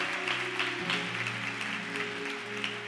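A church audience claps along in a steady rhythm over sustained organ chords as they welcome their New Jersey family, the crowd's hand-clapping forming a dense, continuous wash of sound with no one speaking.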